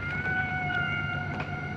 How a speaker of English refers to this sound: The Pacific squall bobbed on top of the cresting waves, the steel hull of the research vessel vibrating from the whale song.